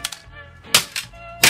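A hammer cracks against a plastic cassette shell: two light taps, then three sharp, loud smacks spaced unevenly, with a steady low tonal hum running underneath and no talking.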